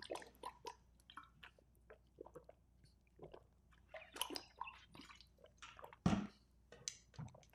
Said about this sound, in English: I take a drink of water now, high quality H2O.